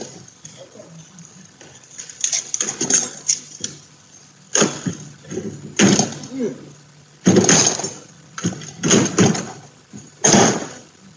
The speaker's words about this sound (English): Now they're lifting the fridge back up.